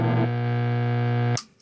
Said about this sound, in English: Yeah, it seems like I've got the hum back. I don't understand why that's back, though. I'm not using that broken power supply.